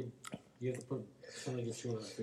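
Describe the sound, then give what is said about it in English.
Someone chews a big, wet mouthful right up against the microphone, several loud rhythmic chomps with throaty humming mixed in, no clear words spoken. “Big chew.”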